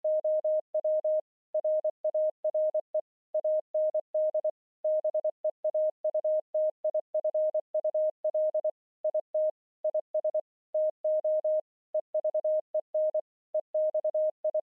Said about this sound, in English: Those lyrics are found in Morse code form, so they play actually twice in the song. Here's what they sound like, so you can kind of keep an ear out for it.